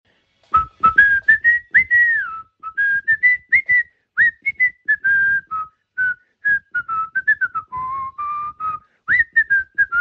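Someone dancing whistles a bright, lilting version of the carol In Dulce Jubilo, phrase after phrase of pitched notes with short gaps between them, accompanied by faint scuffing or stepping sounds, with no talking.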